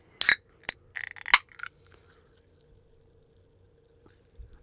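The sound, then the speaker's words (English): A few sharp bursts of liquid pouring splash out in the first couple of seconds, followed by a faint, quiet fizzing hiss as sparkling water, Pamplemousse LaCroix, settles. No one speaks. “The fizz. I love it.”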